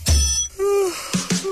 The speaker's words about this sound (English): as the alarm kicks in for another day.